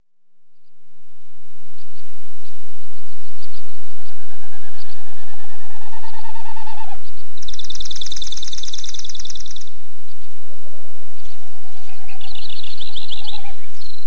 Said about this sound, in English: The sound of a Wilson's snipe, just one of the birds in this avian chorus caught on a remote recorder in Thaidene Nene Indigenous Protected and Conserved Area.